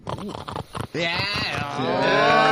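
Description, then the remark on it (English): A loud voice imitates a pig munching and feasting, with quick choppy smacking grunts followed by a long, drawn-out nasal squeal that swells toward the end. “let me give you a quintessential pig”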